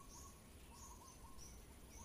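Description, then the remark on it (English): Faint birds chirp in the trees, high thin calls repeating every half second or so over a steady background hiss, with no one speaking. “And you can hear birds in the trees.”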